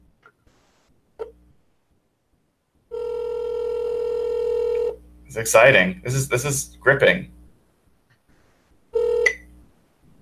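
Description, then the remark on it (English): A phone rings on an outgoing call: a long, steady ringback tone, then a second shorter ring a few seconds later. A person briefly talks over and between the rings. “And believe it or not, we're going to have to do this the old-fashioned way by actually dialing someone on the telephone.”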